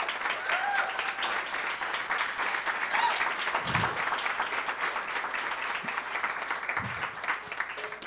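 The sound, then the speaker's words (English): An audience at a specialty coffee talk applauds steadily for several seconds in a round of applause for a speaker, a dense, continuous wash of many hands clapping at once, fairly loud, with no pauses. “So can we just one more big round of applause”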